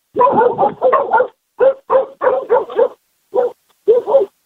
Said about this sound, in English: Sorry about that. That always happens when my name's called. Dogs bark.